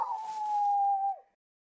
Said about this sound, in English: dog ran ahead, disappeared from view, and began howling in pain.